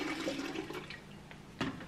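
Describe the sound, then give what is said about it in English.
Filtered water from the door dispenser of a fridge pours steadily into a container, a continuous rushing, gurgling stream with a brief louder splash near the end and no voices. “Take filtered water, it's right out of my door on my fridge. Pour it in.”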